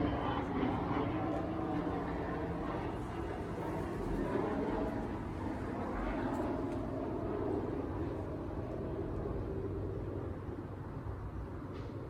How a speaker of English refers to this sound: Oh, here comes a plane.